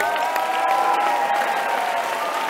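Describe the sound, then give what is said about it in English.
An audience applauds for the Lord, steadily, a dense wash of many hands clapping at once, fairly loud and sustained throughout without a break, with no talking over it. “Give the Lord a clap.”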